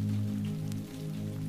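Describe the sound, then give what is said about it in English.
Steady rain falls outside the windows, pattering softly beneath a low, continuous hum, with a brief faint tick partway through; the sound stays even and muted, as if heard from indoors. “The windows look out onto Melody Lane as the rain continues to fall.”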